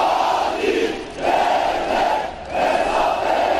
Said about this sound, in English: They've gathered in their thousands here in Ankara in mourning and in protest at a government which they hold responsible for this country's worst ever attack.